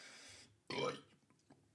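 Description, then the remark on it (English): A single loud burp from a person drinking alcohol bursts out after a brief breathy noise, followed by faint low mouth sounds and quiet murmurs. “If you don't like burping, I apologize, but it's a drunk cast.”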